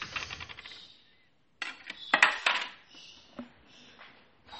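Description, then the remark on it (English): Glass trays being handled, with a series of bright clinks and rattles, a brief pause, then louder clattering bursts and scraping knocks before the sounds settle and trail off. “Oh, that's just my glass trays.”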